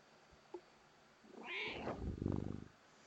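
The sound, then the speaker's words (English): A cat named Kitty lets out a drawn-out, warbling meow that rises and then falls into a low, rough trill, in an air-conditioned studio with no one speaking. “Yes, Kitty, we are back. Kitty is also enjoying the air conditioning in the studio.”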